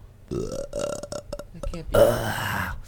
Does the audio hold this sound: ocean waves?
no